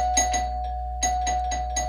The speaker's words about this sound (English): You just ring the doorbell once. What kind of madman is that the other side of the door?